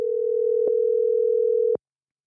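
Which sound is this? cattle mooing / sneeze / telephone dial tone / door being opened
telephone dial tone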